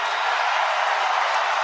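A SmackDown wrestling crowd roars in a steady, dense wash of cheering and noise, loud and unbroken for under two seconds, with no distinct voices standing out.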